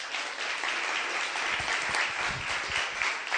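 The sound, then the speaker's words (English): A crowd at a boxing tournament applauds the born-again Christian in the right-hand corner, a dense wash of many hands clapping at an even loudness for a few seconds with no one speaking. “Can we have some round of applause for him, please?”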